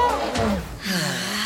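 A single sneeze: a sharp gasping intake of breath followed by a short, explosive burst of breath, fairly loud, then a brief voiced trailing sound.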